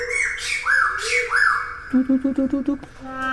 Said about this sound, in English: And after a while, birds who were silent before, they started to join in. They started to sing.